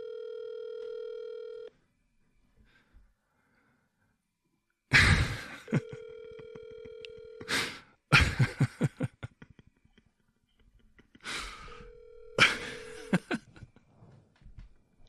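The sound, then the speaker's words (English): Phone dialing and ringing: a steady tone, then loud breathy bursts and a run of clicking pulses, broken up by repeated mid-pitched ring tones, with no talking. “Right now, please leave a message after the beep.”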